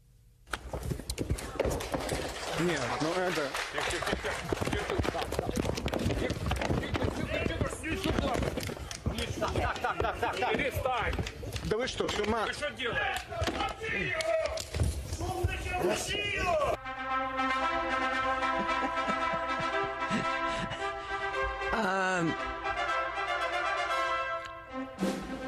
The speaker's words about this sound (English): And there's a punch while he's holding Yuri Bafusov. This is the pro-Russian politician, Nestor Sufrich, and punches him in the face. And then wrestles him into a headlock, and it all sounded just like this.